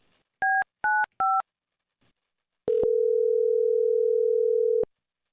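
Three quick dual-tone telephone keypad beeps are pressed in a steady rhythm as a caller is redialed, then after a short pause a steady, loud telephone tone hums for about two seconds before cutting off. No one speaks.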